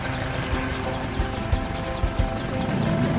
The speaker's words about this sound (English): Wait, does that say U.S. Army on the helicopter?